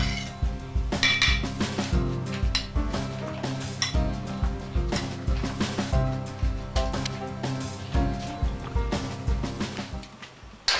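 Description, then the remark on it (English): Metal cookware clanks and knocks against a stovetop again and again as a pot of liquid is set on the stove burner and turned to high to bring it to a boil, a busy run of ringing clinks and thuds lasting several seconds, fairly loud, with no one speaking. “Now I'll have to bring this over to my stove and put it on high.”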